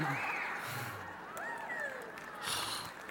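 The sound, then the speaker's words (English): A crowd applauds steadily, a dense wash of clapping with a few rising whoops and cheers mixed in, swelling briefly louder near the end. “Why are you clapping?”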